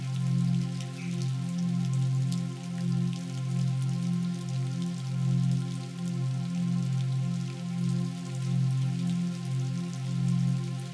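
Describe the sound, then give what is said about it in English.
Steady rain patters and crackles throughout, a dense continuous texture of drops over a low, gently pulsing droning tone. No one speaks. “This is a place where you allow your worries to be carried away by the falling rain.”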